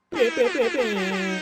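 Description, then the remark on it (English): A single loud boat horn blast sounds alone, a brassy, harmonic-rich tone that wavers briefly at the start, then holds steady for over a second. “It would be the boat horn.”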